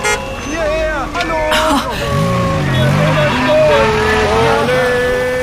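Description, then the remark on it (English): Busy street traffic with engines rumbling steadily and car horns tooting repeatedly in overlapping, wavering tones while voices call out over the din. All the cars are heading in the same direction, west toward West Berlin. “All these cars are going in the same direction. They're all going west.”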